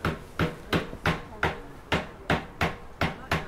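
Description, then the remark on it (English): A naval officer taps a naval mine with a bronze hammer while working to defuse it: about nine evenly spaced light strikes on metal in a steady, unhurried rhythm, fairly soft, each with a brief ringing decay. “He's hammering very delicately.”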